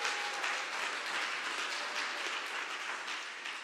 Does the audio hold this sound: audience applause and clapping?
yes